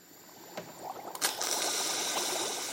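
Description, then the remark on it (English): Pasta water boiling over in a pot: a couple of sharp pops and clatters, then a steady fizzing rush of frothing bubbles that holds to the end. No one speaks. “Ah, the classic pasta water, rice water surge, enemy of carb lovers everywhere.”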